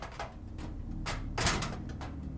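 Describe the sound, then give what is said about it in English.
A stuck closet door is yanked again and again, rattling in about five sharp jolts with one heavier bang in the middle, with no one speaking. “While Herschel is yanking on the door like a man who's lost his wits”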